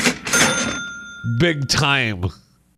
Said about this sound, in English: Big time money drawer opening.